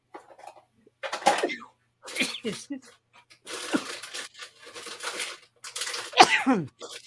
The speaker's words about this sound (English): Excuse me, I got to sneeze again. I'm going to try to mute the mic this time, next time I get to have to do it. But sorry about that.